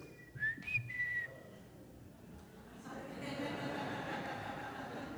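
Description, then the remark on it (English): A short family signal whistle: a person whistles a quick rising-and-falling call of a few notes, then it gives way to a steady wash of background noise. “My parents would use the family whistle whenever we were out in public to find out where we were in a crowd.”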